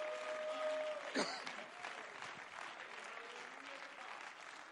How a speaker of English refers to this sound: Oh, somebody give him a hand clap of praise right now.